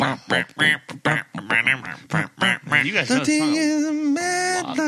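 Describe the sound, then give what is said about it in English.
A person voices a run of short, nasal, duck-like quacks in quick rhythm, then stretches into a long, buzzy held note, fairly loud with no other sounds. “You make a great duck.”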